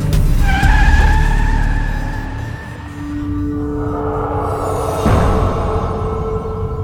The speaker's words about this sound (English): Taxi! Taxi! A yellow cab screeched to a halt, almost running over Tully's foot.